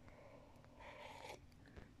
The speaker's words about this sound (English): I'm just going to take another sip.